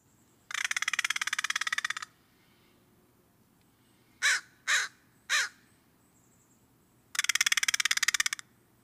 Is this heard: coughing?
no